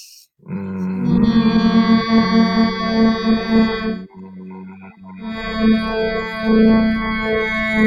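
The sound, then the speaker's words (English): During a guided breathing exercise, a group of voices hums on the exhale, a steady, sustained low drone that fades briefly midway, as if for a breath, then swells back in, blending into one rich, slightly wavering chorus. “And on that exhale, that's when you start to hum.”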